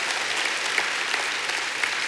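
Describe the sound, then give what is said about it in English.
A church audience at a morning service claps together in a steady, dense burst of applause, moderately loud and continuous for a couple of seconds with no voices standing out. “Just kind of clap if you think God wants so much for you.”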